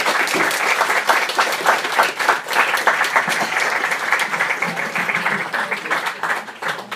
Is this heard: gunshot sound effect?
no